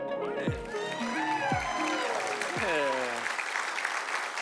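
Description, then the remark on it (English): An audience claps in a steady, dense wash of applause prompted by the senior pastor, with several brief voices and a falling tone rising over it in the first three seconds. “Nothing quite like a authentic clap prompted by the senior pastor.”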